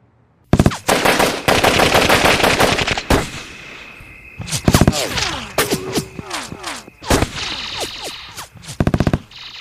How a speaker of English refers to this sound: It was raining again in Hollywood. Only this time the rain was made of pure lead. Metal. Bullets. A rain of bullets was headed my way as I camped out underneath the Hollywood sign.